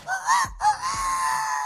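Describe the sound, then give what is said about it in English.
A single drawn-out rooster crow, loud, rising then holding a strained, wavering pitch for under two seconds with no talking over it. “That's the rooster.”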